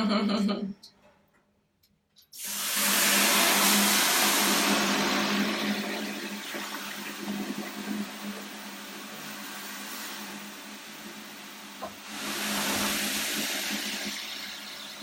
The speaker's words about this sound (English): Whew, there it is. It's like this hits you in the face. Wave of steam coming towards you. But so there's some eucalyptus essential oil in there. And you just gently loila it on.